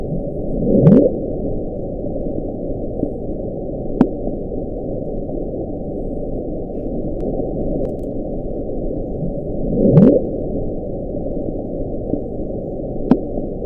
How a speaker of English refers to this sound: So it just sounds like bubbles. It does, of some kind. But what they say the sound was captured by underwater microphones more than 3,000 miles apart.